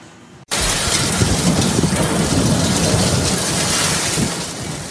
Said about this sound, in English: A global viewer in the Peace region sent in this footage of a severe storm in Fort St. John last night.